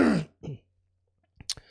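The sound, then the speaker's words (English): A harsh COVID cough followed by a shorter second one, then a brief pause and a couple of quick throat-clearing bursts. No talking. “Excuse me, I'm still getting over this this COVID cough.”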